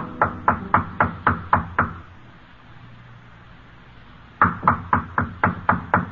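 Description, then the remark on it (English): A hotel room door, room 617, in a dim-lit hotel corridor is rapped on by a man in a pinstripe suit: a quick, even series of about seven sharp knocks, a couple of seconds of quiet, then another run of about seven firm knocks, clear. “The dignified man in the pinstripe suit stops before room 617, casts a quick glance back along the corridor, then knocks on the door.”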